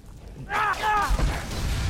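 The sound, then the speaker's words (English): A Dawnbreaker magic sword explosion from a video game: a sudden burst with bright, wavering, shimmering tones that quickly fade into a sustained low rumble. “Jeez, I love those Dawnbreaker explosions. Those do not get old.”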